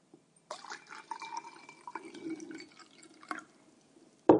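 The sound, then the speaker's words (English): A fourth-generation dairyman in the Tasmanian dairy region of Punter's Arch pours himself milk from a jug into a glass in a steady, gurgling stream for a few seconds, moderately loud, ending with a brief knock as the jug is set down. “The softly spoken, fourth-generation dairyman pours himself another glass of milk from the jug which has been sitting on the table since 4 a.m.”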